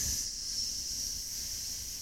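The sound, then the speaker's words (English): A person hisses like a snake, a steady, breathy sibilant hiss held for about two seconds, fairly loud, with no words spoken. “Because you're going to find yourself in places where there's a lot of snakes. Snakes.”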